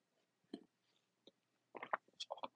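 Someone takes a quiet sip of a tea latte, with a few brief wet slurps and swallowing clicks clustered near the end, and no talking.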